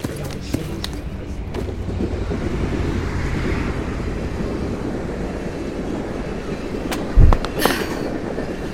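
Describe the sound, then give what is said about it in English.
A subway train clatters steadily along the rails in a continuous low rumble, with sharp metallic clicks and a brief screech of wheels near the end. “Well, that was a fairly impressive bit of subway acrobatics, if I do say so myself.”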